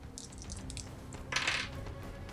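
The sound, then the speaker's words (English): Challenge dice rattle and tumble across a hard surface: a quick run of small clicks, then a louder clattering burst as they settle, landing on a 3 and a 2, with no voices. “We have a 9 anyway, and we're gonna roll that challenge dice and hope for the best.”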